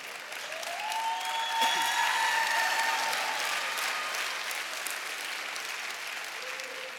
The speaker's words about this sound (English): Why there's so many people clapping? Because so many people obey God.